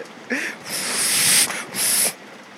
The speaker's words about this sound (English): But the fact that it's somehow raining harder than ever before. I love it. We have our third host is the rain. You can just hear it.